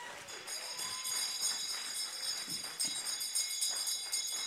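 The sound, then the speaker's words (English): A church audience claps steadily together for their pastor, a dense, crackling wash of many hands that holds an even loudness for several seconds without pausing. “So clap for your pastor.”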